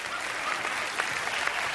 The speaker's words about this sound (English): Okay, you can clap. That's fine.